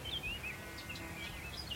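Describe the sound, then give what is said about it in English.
A blackcap about 30 yards away sings bright, quick warbling phrases over a softer morning chorus of other birds, the notes rising and falling, with no voices present. “But as you can hear, there's still this black cap just appeared beside me, or 30 yards from me.”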